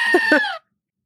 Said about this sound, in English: Censor it with the goat screaming. There you go.